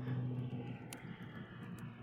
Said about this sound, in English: There's a plane going overhead. It's loud.